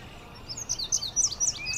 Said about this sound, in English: Up above us, there's an indigo bunting singing up in the maple right there.